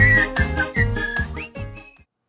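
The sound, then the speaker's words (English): A bright whistled tune glides and slides over a steady, rhythmic strummed accompaniment, each note clear, before everything stops abruptly after about two seconds. “Let's whistle!”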